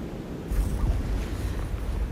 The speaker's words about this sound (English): The wind has calmed a bit and the rain seems to have gone.